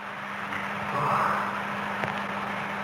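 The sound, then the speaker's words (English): Electric heater fans in a church give a steady low hum with a soft airy whoosh, unbroken for the whole stretch and swelling slightly midway. No one speaks. “The humming in the background is the fans of electric heaters warming the building.”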